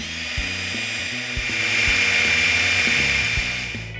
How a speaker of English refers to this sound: Okay, I decided to drill it right here.